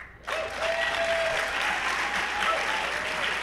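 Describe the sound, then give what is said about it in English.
An audience at the Garneau Theatre during Edmonton Lit Fest bursts into applause for a panel after a brief hush, the clapping dense, loud and steady for several seconds, with a faint whistle-like tone threading through it. “Please, a warm round of applause for our panel.”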